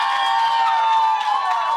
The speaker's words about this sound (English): The folks in the room are cheering because, despite the fact that his party has lost, well, 2/3 of their seats, Tom Mulcair is leading in his race in Outremont right now.